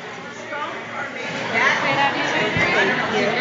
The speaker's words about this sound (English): Listen to the crowd.